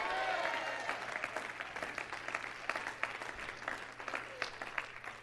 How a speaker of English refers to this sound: Everybody clap your hands and shout, yeah.